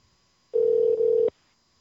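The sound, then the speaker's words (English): A single burst of an outgoing phone call's ringback tone, a steady electronic hum lasting under a second, clear and alone with silence on either side. “It's ringing.”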